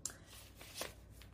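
Soft papery rustles and swishes as the pages of a Victorian-style junk journal are flipped through, a few quick flips with a slightly louder sweep near the middle, quiet with no talking.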